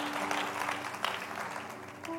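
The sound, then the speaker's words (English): A seated audience claps their hands unto the Lord in a steady wash of applause, dense and continuous without a clear rhythm, with a faint sustained tone humming underneath. “So I want you to just, if you would, as you're seated, clap your hands unto the Lord and just acknowledge it, and you can be seated.”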